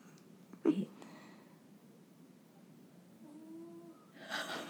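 pet snoring loudly

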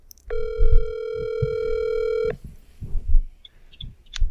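telephone ringing

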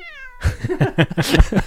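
cat meowing

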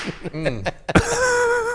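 slap sound effect

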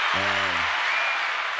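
hand claps sound effect

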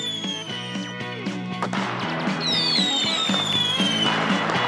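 fireworks exploding

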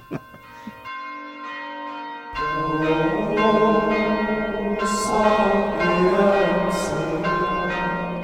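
church bell ringing

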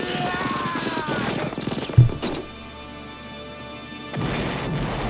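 explosion sound effect

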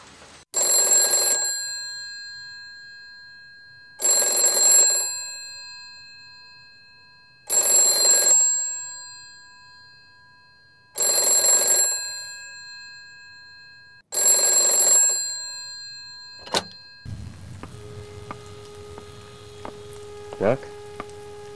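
telephone ringing

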